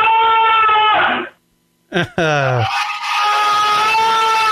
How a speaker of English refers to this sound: It's like dueling guy screams.